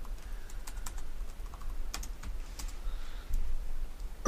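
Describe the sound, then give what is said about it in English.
Quick, irregular clicks of someone typing on a computer keyboard, fairly quiet, with a few brief pauses between bursts of keystrokes and no voices. “I just don't feel like typing it. N-I-D...”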